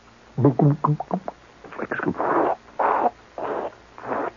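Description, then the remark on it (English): A voice imitates gurgling gasoline being siphoned through a tube from the gas tank of a Plymouth car: quick burbling vocal pulses, then four rhythmic bursts of breathy, bubbling noise, loud and repeated at roughly even intervals. “And way down in the guts of the car, you can hear this gas tank...”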